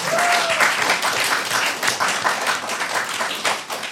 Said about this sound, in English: Round of applause for Turkish Delight.